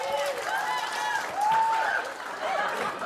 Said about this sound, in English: up you come, buddy. Give him a clap.